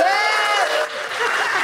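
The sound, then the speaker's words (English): A live show audience claps and cheers loudly and steadily, a dense wash of hands with excited voices whooping through it, sustained throughout the short burst. “If you're excited for that, let me hear a big round of applause.”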